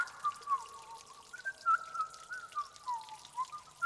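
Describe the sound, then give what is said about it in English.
A person whistles a wandering, wavering tune at a fairly soft level, the single pitch sliding up and down continuously for several seconds with faint background hiss and no talking. “Why am I whistling?”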